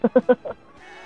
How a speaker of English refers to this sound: I like how you can hear the goat so clearly.